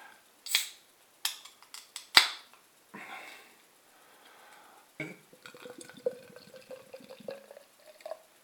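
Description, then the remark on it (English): A few sharp clinks and taps of glass and bottle, then a cold brewed iced coffee porter glugs and splashes into a World Beer Festival glass in a steady, bubbly pour, moderately loud, with no one talking. “Right, let's get this out into my glass.”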